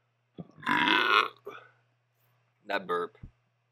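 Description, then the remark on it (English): A long, loud, gravelly burp rumbles for nearly a second, followed by a short pause and a brief murmured voice, with a faint steady hum underneath. “That burp was a 6.”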